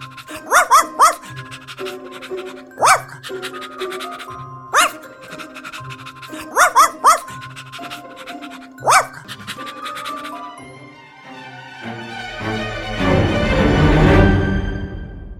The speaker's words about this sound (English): Right, she would have been much sicker if she ate all that chocolate. She seems like a good dog to me.